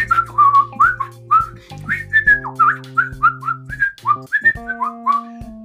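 Someone whistles a lively, bouncing tune, with quick rising and falling notes throughout, while low sustained tones hum steadily underneath.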